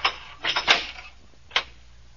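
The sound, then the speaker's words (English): A handful of sharp, hard footsteps tap along a corridor at an uneven pace, a quick cluster followed by a pause and one more step, moderately loud with no voices. “I hear footsteps coming down the corridor now.”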